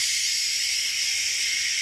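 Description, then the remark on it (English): A fire extinguisher sprays in one continuous, loud, high-pitched hiss that holds steady and unbroken for the whole stretch, with no voices over it. “on my left arm, I have a fire extinguisher.”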